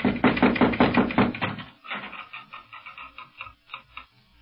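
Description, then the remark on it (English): A quick series of loud, hollow raps on the wooden door of a house on a Moorish street in Morocco, about eight sharp knocks in a steady rhythm, followed by softer, scattered tapping and faint rattling that fades out. “No, but here, let me knock.”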